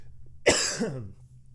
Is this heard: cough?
yes